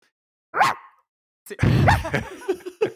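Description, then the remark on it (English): A person imitates a dog barking: one short yelp, a brief pause, then a louder, drawn-out bark trailing into a few rough, breathy grunts, clear. “So can you bark?”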